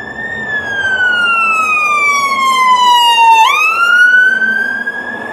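An ambulance siren wails loudly and steadily as the vehicle passes by, its tone sliding lower, then jumping and rising again, over a low rumble of road traffic. No one speaks.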